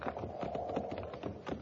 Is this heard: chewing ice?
no